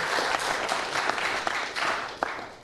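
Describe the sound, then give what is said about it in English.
An audience applauding, a steady dense wash of clapping with a few sharper individual claps standing out, sustained without a break. “Let's clap it up.”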